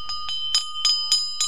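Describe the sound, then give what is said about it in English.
A large bell, rung by villagers in Viharagala to scare away roaming elephants, rings rapidly, its clapper striking about six times in quick, steady succession while a bright metallic tone hums on between the strikes. “Instead of turning to guns and poison, villagers in Viharagala are now using large bells, supplied by the Millennium Elephant Foundation, to scare away roaming pachyderms.”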